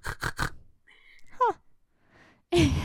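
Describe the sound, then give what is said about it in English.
Someone does a quick triple pig snort with their voice, three rough nasal bursts in a row, followed by brief vocal sounds and another loud, breathy snort-like burst at the end. “I like your snort.”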